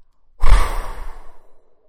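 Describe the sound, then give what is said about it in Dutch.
A voice imitates a wolf in a story blowing hard at a little house of straw and twigs: one long, forceful breathy gust that bursts in strongly, then trails off gradually over about a second and a half, with no words spoken. “De wolf haalde diep adem en blies hard.”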